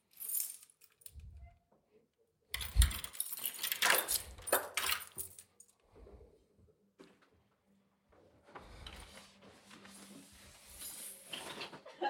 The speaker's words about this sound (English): So, look. Sometimes if I keep my keys here and shake them, Stormy comes up to the door and meows as if to say, like, can you hurry up?